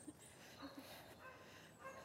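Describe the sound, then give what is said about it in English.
A few faint dog barks, short and scattered across a quiet outdoor background during a walk, with a hint of voices; the dog is up ahead and out of sight. “You hear that dog? Can't see it.”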